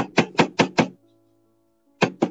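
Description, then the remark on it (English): Two charity collectors asking for donations knock on a door: four quick, evenly spaced knocks, a brief ringing pause, then two more firm knocks. Loud, with no voices. “Just at that moment, two charity muggers decided to knock at his door asking for donations.”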